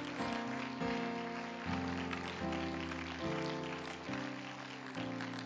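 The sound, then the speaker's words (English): A church audience claps steadily to give thanks to the Lord, a dense, continuous wash of applause, while sustained musical chords shift every second or so underneath. “And would you give thanks to the Lord by clapping your hands to him right now?”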